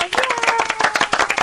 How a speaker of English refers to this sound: Tracy has earned you a round of applause.